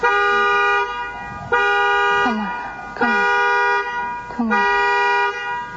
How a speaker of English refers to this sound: triggers the alarm in the suspect's car in the hope of drawing him outside. Can she get in the car and then turn the alarm on? Yeah, I think you can do that.